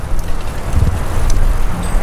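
A steady, loud low rumble of road traffic as cars and trucks shoot by a group riding bikes along a road between a river and orchards, mixed with blustery wind noise across the microphone. No one speaks.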